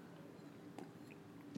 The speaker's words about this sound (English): Dramatic pause to drink some water.